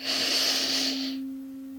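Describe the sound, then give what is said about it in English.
A long, airy deep breath drawn in through the nose during a guided breathing exercise, loud, lasting about a second before fading, with a steady low hum continuing underneath and no talking. “Take a deep inhale through the nose.”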